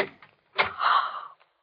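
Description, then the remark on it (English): The door of room 421 is pushed open with a sharp click followed by a long creaking swing that fades out after about a second, with no voices. “His door is open, too.”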